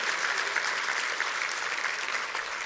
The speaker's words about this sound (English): Clap your hands and say, I buy that, Pastor. I believe that.